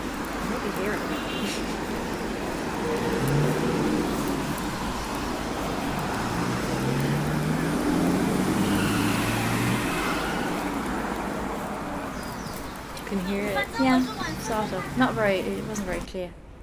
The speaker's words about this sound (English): So we've discussed in the past, there are a lot of people in Shenzhen that have a lot of money. And some of them buy fancy cars. And this is someone with a fancy car, but not enough road to drive fast.